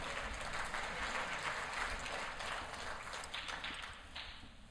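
A crowd claps steadily, a dense wash of many hands beating together without pause, fairly loud throughout and tapering off slightly toward the end.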